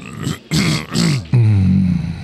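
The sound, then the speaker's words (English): A voice imitates clearing a throat: two or three raspy, breathy rasps in quick succession, then a longer voiced, growling hum, all fairly loud. “I just end up clearing my throat.”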